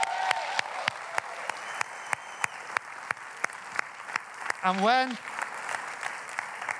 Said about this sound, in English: In fact, because they're listening, I just would like you to give a round of applause to Joel and Claire Harry. Come on.